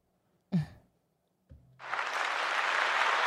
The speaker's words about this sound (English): I'm going to throw a little applause button for you.